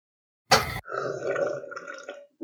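A loud slurp of water from a cup, followed right away by a long, rough, gulping exhale like an exaggerated satisfied gasp or burp, with no talking.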